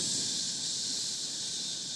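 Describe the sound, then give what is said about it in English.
A person in a studio imitates a hiss with their voice to describe a hissing issue, a steady, airy, high-pitched rush of breath held for about two seconds without a break, fairly loud and with no talking. “I'm getting like a hiss.”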